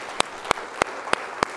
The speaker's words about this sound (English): Come on, give the Lord a hand clap today.